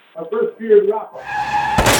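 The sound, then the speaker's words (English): A brief voice is followed by a loud car tire screech, a sustained high squeal that ends abruptly in a sharp crash with shattering impact noise. “If you've been hurt in a car accident, call the lawyers at the Carlisle Law Firm.”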